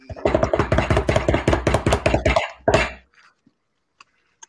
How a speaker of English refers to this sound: Drum roll, please.